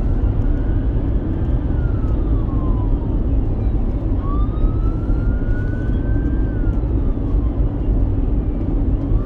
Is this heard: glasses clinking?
no